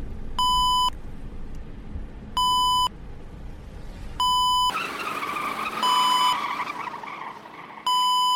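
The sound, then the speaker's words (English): Loud electronic warning beeps repeat at a steady pace inside a passenger vehicle, five tones roughly two seconds apart, each sharp and harmonically rich, over a rumbling vehicle engine and road noise. “And bear in mind, these beeps aren't your typical alarm clock beeps. These beeps are so fucking annoying.”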